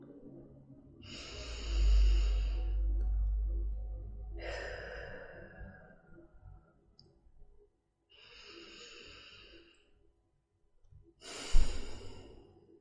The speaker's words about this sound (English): Didn't that breath almost feel like a calm ocean wave? So beautiful.